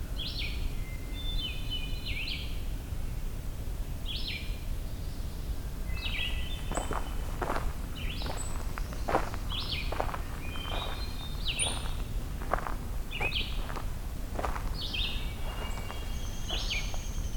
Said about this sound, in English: A distant winter wren as well.